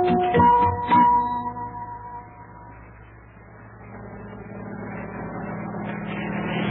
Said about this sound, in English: But as today's episode begins, we're all aboard the April Blossom looking at the helicopter.